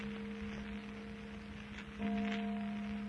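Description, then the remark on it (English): A church bell, coming from the direction of the old church, rings with a steady, humming low tone, then a fresh, louder stroke adds brighter overtones partway through. A soft hiss sits underneath, and no one speaks. “Church bell, all right? Yeah. Coming from down toward the old church, too.”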